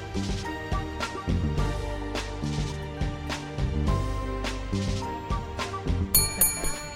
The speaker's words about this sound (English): Oh, somebody's ringing the bell. What happens when you ring the bell? Somebody will be notified that there's a customer at the bar.